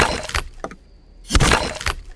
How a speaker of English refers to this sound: With a horrifying woodland shriek, it begins the groan and cracking sound of a tree falling in a forest with the four of you around. It does make a sound.